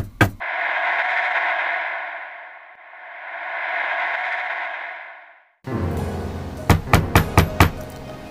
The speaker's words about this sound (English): Knocked on the door. Who's out there?